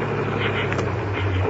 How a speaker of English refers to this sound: There's another car. They're parking on the bridge. He's turning his headlights out, too.